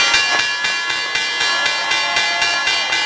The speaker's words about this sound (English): And while it's not the same as it was decades ago, you can still feel the energy peak every morning at 9:30 sharp, when the bell signals the opening of the markets.